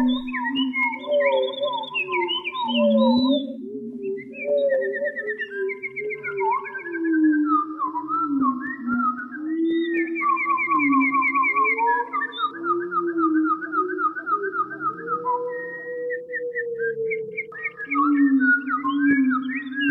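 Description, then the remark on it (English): A studio-processed composition built from a recording of a lone wood thrush in the Canadian woods near Quebec, made by Bernard Fort: layered, overlapping flute-like whistled phrases and trills repeat and echo over a low, sustained hum, playing continuously without any talking. “Bernard Fort recorded a lone wood thrush in the Canadian woods near Quebec and employed some studio wizardry to create this composition”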